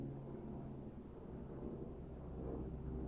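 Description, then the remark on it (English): A steady, deep roar of an airplane flying overhead, a broad low rumble that holds constant for a few seconds with no one speaking. “I'll just wait while that plane goes overhead.”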